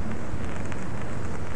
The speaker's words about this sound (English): Raining again. Oh, what a climate.